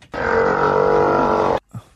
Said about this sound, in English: That's a seal. I think that's a seal. We know our seals. Yeah, that's a fat-ass seal. That is correct.